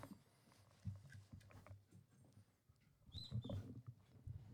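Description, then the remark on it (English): A dog barks in the background, a few scattered barks over a low rustling ambience, with no one speaking. “now we hear even more dogs because Lucky is barking in the background”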